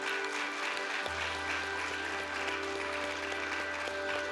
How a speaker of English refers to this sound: Capital City, I want to stay in a spirit of worship, but I do want you to raise an applause for Tom and his whole team around here this morning. Let's give them a hand.